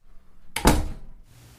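A single heavy door slams shut with a sharp, loud bang that rings briefly and fades, heard on its own with no talking.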